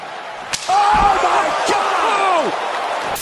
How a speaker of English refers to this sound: I felt really, really sorry for Sasha Banks' right-hand side after that whip. Oh, the noise of it.